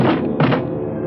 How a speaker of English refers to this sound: And finally, the collapse, the heap on the concrete floor.